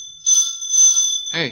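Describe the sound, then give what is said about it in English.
A doorbell rings in two bright, shrill bursts, fairly loud, and a person starts speaking right after the second ring. “Hey, doorbell's ringing. I know the doorbell's ringing.”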